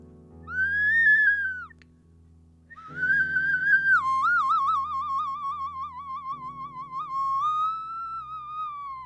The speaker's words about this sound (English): So I use the Spanish clay whistle, the ocarina, to do this. Here we go.